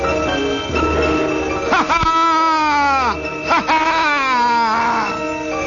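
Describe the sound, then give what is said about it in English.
Two long, high-pitched wailing yells rising out of the distance, each wavering and sliding downward in pitch, rise after a brief noisy start and ring out loudly one after the other. “Then out of the distance there rose a yell.”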